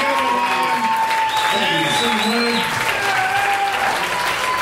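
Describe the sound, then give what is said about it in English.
A crowd claps loudly and steadily, a dense wash of applause that holds for several seconds, with a few voices and tonal murmurs rising faintly underneath. “Everybody, thank you so much. The big round of applause.”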